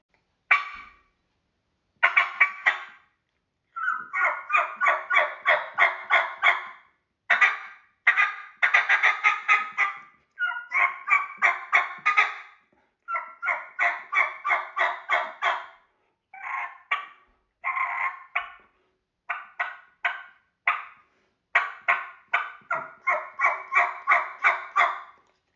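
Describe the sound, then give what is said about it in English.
Excited wild turkey hen calls imitated with a call, thrown in to pick up the tempo after an excited gobble. Fast, loud runs of sharp yelps and cutts come in repeated bursts with brief pauses, clear, with no talking. “So kind of throwing in a little bit of an excited hen in there and just kind of picked it up.”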